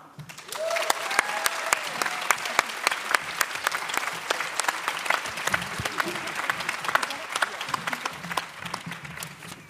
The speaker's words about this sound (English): So can I please have your best artistically derived, as we found out, round of applause for all of the artists that are on this stage behind me.